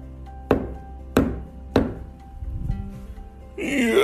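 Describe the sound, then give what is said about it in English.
Three hollow, woody knocks on a tree land in a slow, evenly spaced sequence, fairly loud, followed by a brief stretch of quiet before a voice begins at the end. “Maybe I'll just start banging on the tree and see what happens.”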